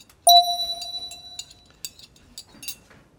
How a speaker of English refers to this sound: Okay, ready? 60 seconds, our time on the clock. Listen for the bell. Ready, set, go.